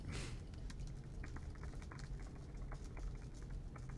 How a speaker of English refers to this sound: Dear listener, you can hear us typing away.